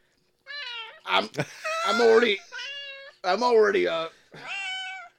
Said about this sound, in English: I decided to adopt a cat truck. Okay. So I got all these cats here. Okay.